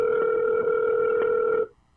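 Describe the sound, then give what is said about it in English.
A telephone dial tone on an outgoing call hums steadily and loudly for about a second and a half before cutting off abruptly into near silence. No one speaks. “After this phone call.”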